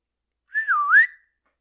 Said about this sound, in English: A call whistle.